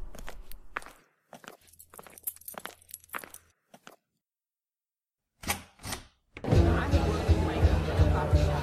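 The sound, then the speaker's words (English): Crisp, irregular footsteps approach the front step of a large house at night, a quick run of taps followed by a brief silence and two more steps, then a loud, dense wash of noise suddenly takes over. “the keys to the Chevy dangle from a finger as we approach the front step of the large house, letting our motives here tonight resonate down the empty street.”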